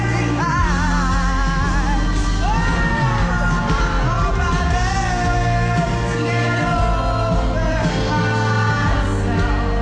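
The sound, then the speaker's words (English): Loud, sustained yelling and whooping from a concert crowd, with shrill, wavering voices rising over music and a dense roar of people filling the whole stretch. “The problem for me was the literal screaming.”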